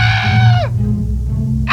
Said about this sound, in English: As I go on pounding the dough, I hear a horrible, bone-chilling scream.